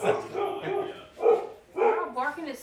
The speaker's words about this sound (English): Barking at something that's the front door.